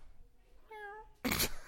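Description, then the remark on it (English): A cat named Pottles, under the table, lets out one short, clear meow, followed moments later by a brief, loud burst of hissy noise; no one speaks. “God damn, dude, you brought your cat to the podcast?”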